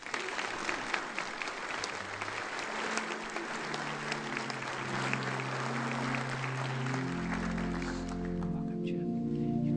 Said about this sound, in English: Welcome to Church of the Palms. Would you welcome them with your applause?